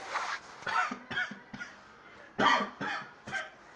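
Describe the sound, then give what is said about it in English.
A harsh coughing fit: six or seven rough, bursting coughs in quick irregular succession, fairly loud, with no talking in between. “I had to cough, sorry.”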